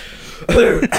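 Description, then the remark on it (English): A female dog coughs, two harsh, raspy bursts back to back after a moment of near silence, loud and hacking with no talking over it. “Why is your dog barking so much? Oh, no, she's coughing.”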